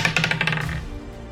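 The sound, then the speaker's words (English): A twenty-sided die, rolled for a strength saving throw in a tabletop role-playing game, clatters and tumbles across a tabletop in a quick series of bright ticks and bounces, then settles; fairly clear, with no talking. “Where's my 20-sided dice?”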